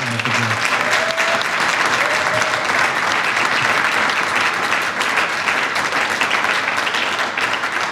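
audience applause

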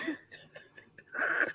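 a cough

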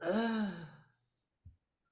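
a gasp

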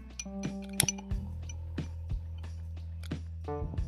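lighting a candle

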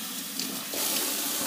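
water being poured

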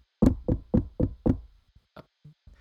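knocking on a door

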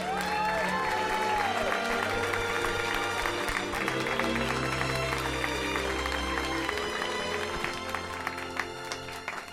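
audience applause and cheering

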